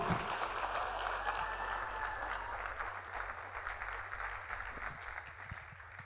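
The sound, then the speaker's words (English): An audience claps steadily for several seconds during a sermon, a dense, even patter of many hands with a constant low hum underneath, gradually easing slightly toward the end. “Clap your hands.”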